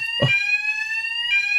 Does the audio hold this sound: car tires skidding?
no